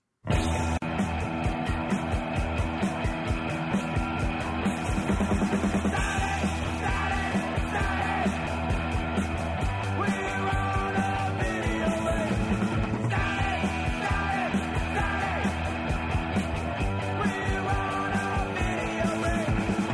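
A loud, fast punk rock song blasts steadily, with driving distorted guitars, pounding drums and a shouted, raw lead vocal over a dense, unbroken wall of sound.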